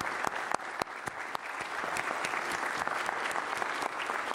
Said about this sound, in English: I need y'all to stand up. We need to give them a round of applause for being our directors this week.